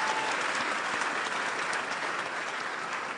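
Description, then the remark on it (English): An audience claps steadily in appreciation of God after hearing that the film Mama Drama is now on Netflix, a dense wash of many hands with no clear individual beats, holding an even level from start to finish with no voices standing out. “Yes, you can clap.”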